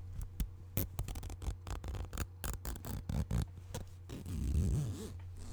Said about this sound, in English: That was a zipper.